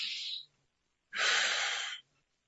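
A loud, breathy inhale drawn sharply through the mouth, an exaggerated shallow chest breath with the shoulders moving, following the tail of an earlier breath; a short rushing sound lasting under a second with silence around it.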